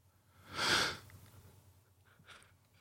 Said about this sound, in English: I'm exhausted. You can hear I'm yawning.